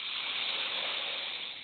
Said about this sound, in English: So we take a deep breath right here.